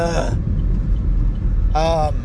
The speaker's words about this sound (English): Traffic.